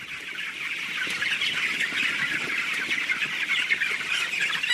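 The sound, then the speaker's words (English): A dense, continuous chorus of about 23,000 young broiler chickens cheeping and clucking together inside a sealed, climate-controlled poultry house at Valley Pike Farm in Virginia's Shenandoah Valley, a steady high-pitched din with no pauses and no voices. “About 23,000 young chickens will spend most of their lives in this sealed, climate-controlled birdhouse.”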